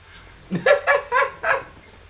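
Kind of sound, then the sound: animal, dogs barking and whimpering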